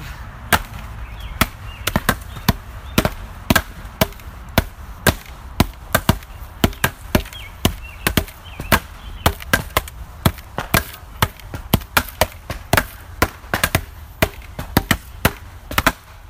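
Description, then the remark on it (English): Loud, sharp hand slaps ring out in a quick, steady rhythm, dozens of smacks over a low background, with no talking. “There you go. Symphony of slaps.”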